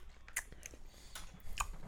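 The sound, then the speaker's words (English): Wet open-mouth chewing of edibles with irregular smacking and crunchy clicks, several bites in quick succession, with no talking. “You got to chew with your mouth open with this shit.”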